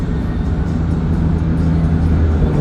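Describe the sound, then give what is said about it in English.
Steady, loud road noise from inside a car moving at night: a constant low rumble with a faint engine hum running underneath, unbroken throughout, with no voices. “This is a vehicle that I have not driven before now, so I feel pretty good about that.”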